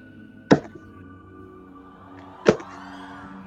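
Two sharp, solid knocks on a wooden table, spaced about two seconds apart, each with a brief ringing tail over a low, steady background hum.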